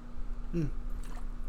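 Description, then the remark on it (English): A quick sip of water, with one short throaty gulp followed by a faint wet click, and no one speaking. “I had to grab some water.”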